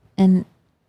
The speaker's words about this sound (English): And oh, she sneezed. Okay. Bless you. Bless you.